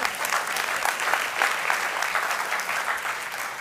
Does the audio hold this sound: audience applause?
yes